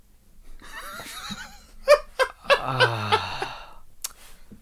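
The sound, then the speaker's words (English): A person imitates a horse neigh: a wavering, trembling vocal whinny broken by several sharp bursts, sliding down into a drawn-out falling note. Fairly loud, with no talking. “Would you rather all cats sound like horses or all dogs sound like horses?”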